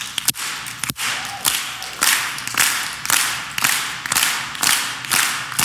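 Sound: audience hand claps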